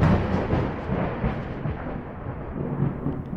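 A loud rumble of thunder from lightning striking the WBCN radio station in Boston rolls on through the whole stretch, deep and continuous with swelling bursts, no voices present.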